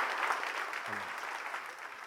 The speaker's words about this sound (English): Clap it up.